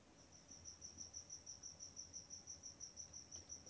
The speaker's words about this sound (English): Wow, cricket in somebody's room. What is that? Oh, that's not your tarantula? No, my tarantula doesn't make cricket noises.